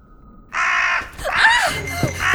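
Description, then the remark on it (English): A crow caws loudly and harshly right up close as it nearly flies into a person, a couple of raspy calls running together, with some rustling movement in between. “Crazy bird! You almost flew into me!”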